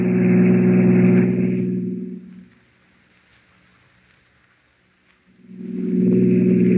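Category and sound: vehicle, car engine driving fast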